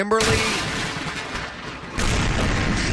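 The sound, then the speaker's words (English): An explosion destroying a wedding dress in Texas, felt from up to 15 miles away, goes off right at the start, followed by a long rolling rumble, then a second heavy, booming blast surges in near the end. “A Texas woman celebrated her divorce by destroying her wedding dress with an explosion felt from up to 15 miles away.”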